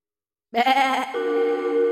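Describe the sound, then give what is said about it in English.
Poulia's lamb bleats in a garden after a moment of silence, giving a wavering, nasal cry that breaks briefly and then carries on as a second, steadier bleat, loud and sustained with no talking. “"That's definitely Poulia's lamb," said the prince, his face grim.”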